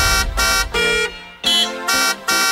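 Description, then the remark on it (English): A car horn honks six times in quick succession, loud, the short blasts falling into a bouncy, tune-like rhythm with no one talking. “Jam-packed with some of today's best music, as well as some honks from yesteryear.”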